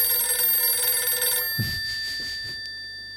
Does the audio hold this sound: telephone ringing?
yes